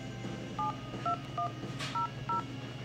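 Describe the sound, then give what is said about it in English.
A phone number being dialed on a mobile phone to make a call: five short touch-tone beeps in a quick, slightly uneven sequence, clear, over a steady low background hum with no one speaking. “So this is the number, if she'll pick up.”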